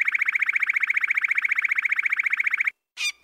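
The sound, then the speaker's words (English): A New York City car alarm pattern: a loud, rapid train of evenly pulsed high tones that repeats steadily for a few seconds, then cuts off before a couple of short, harsher bursts. “And then it dawned on me that the pattern of the bird song was exactly like one of the parts of that car alarm sound that I hear all the time in New York City.”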